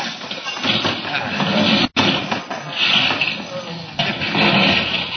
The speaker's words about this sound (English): The car. Look what he's doing to the car, boss. He's wrecking it. There. No one will ever ride in that again.